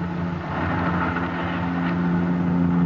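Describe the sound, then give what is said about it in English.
A helicopter engine drones steadily and loudly for the whole stretch, a dense mechanical roar with a low humming tone underneath and no break in level, from a helicopter flying over Kansas City. No one speaks. “This is Harry Anders speaking to you from a helicopter over Kansas City.”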